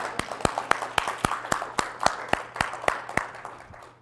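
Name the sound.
audience clapping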